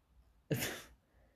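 One sharp sneeze bursts out, loud and breathy, then fades quickly back to quiet with no talking around it.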